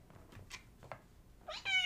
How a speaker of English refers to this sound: Oh, we got a cat. Yeah. our special guest host, Artemis.